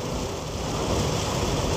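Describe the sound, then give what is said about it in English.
Steady rain drums on a moving car, a dense, even hiss over a low road rumble that holds at a constant loudness throughout, with no voices. “Yeah, the sound of the rain is nice, it's just hard to drive in.”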